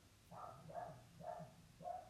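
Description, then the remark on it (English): A dog barks four times in a steady rhythm, each bark short and sharp. The barking is fairly faint, with no voices. “that I'm just like, damn, that dog is going off.”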